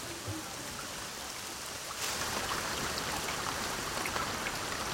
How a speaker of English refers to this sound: I love the sound of the rain and the voices. Thunder.